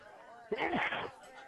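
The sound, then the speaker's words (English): A single sneeze bursts out, a brief, breathy blast of just over half a second that stands out clearly above a low, steady background murmur. “Bless you.”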